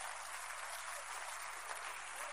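A church audience claps steadily during a sermon, a dense, continuous wash of many hands with no pauses and no voices.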